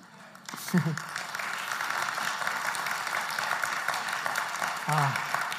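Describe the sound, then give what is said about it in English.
A church audience claps in a steady, sustained wash of applause lasting several seconds, with a couple of brief voices calling out over it. “Thank you for clapping.”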